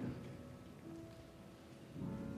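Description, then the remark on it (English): Steady rain hisses softly and continuously, with a low rumble of thunder swelling underneath, especially near the end, during a morning worship service. No voices. “I love to hear the sound of the rain and the thunder.”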